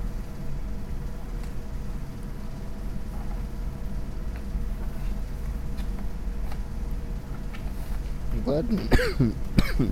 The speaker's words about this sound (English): Sorry about this cough, guys. I don't know where it came from.